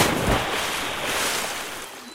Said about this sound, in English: Buto Ijo and Timon Mas disappeared inside the raging river.